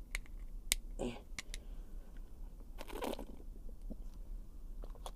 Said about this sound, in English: Let's take a sip of water here.